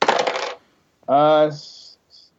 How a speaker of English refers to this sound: Okay, so do I just roll and then tell you what I roll? Yeah. Okay. Two dice.